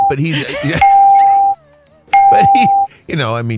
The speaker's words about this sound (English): The bell again.